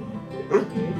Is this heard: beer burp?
no